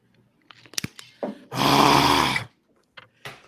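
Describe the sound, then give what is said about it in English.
A drink is poured into a glass in one steady, full-bodied gush lasting about a second, with a few faint clicks and knocks before and after, as friends toast and get ready to chug. “I'm still pouring.”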